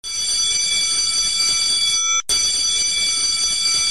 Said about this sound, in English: Just waiting for the bell. That good old school bell.